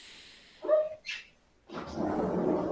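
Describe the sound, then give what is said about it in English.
A dog gives one short bark at its bathroom time, followed by a brief breathy huff and then a stretch of steady rustling noise. No one speaks. “Dog bathroom time.”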